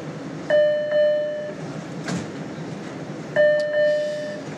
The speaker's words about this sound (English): Please stand clear. The doors are closing.